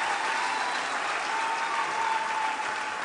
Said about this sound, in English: Yeah, clapping for my counselor like that. I know who you are.